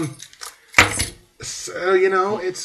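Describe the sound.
Keys jangle and clink nearby in a short metallic burst, with one louder rattle, followed by a person talking.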